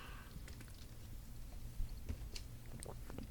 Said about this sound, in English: Let me take a sip, bitch.